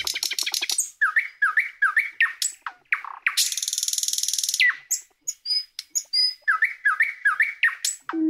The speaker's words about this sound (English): That's the actual nightingale song coming in.